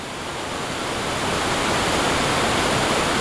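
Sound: waterfall sound effect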